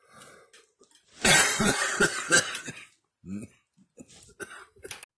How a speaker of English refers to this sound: Excuse me for my coughing. Sorry about that.